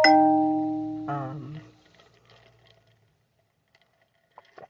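A phone notification chime sounds as two bright electronic tones, the second a touch lower, each ringing out and fading. Faint quiet rustles follow, with no talking.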